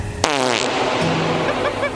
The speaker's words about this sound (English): That's why, from this day forward, I swore I would never fart again. Or belch.